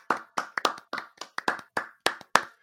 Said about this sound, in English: today is February 1st, which means it's the start of Black History Month. Clap it up for Black History Month.